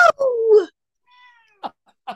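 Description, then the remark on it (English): A female cat lets out a drawn-out, wavering meow, followed by a faint high whine and two short, clipped chirps, with no talking. “Even your cat can't handle it.”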